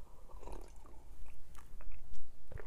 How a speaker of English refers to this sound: So here we are. This is story time. I have a little sip of my coffee here.